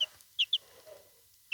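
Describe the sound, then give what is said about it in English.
A baby chick named Buffalo chirps in short, high-pitched peeps, four quick bursts spread across the moment, fairly loud, with only faint background noise between them and no talking. “Oh, did you hear that chirp?”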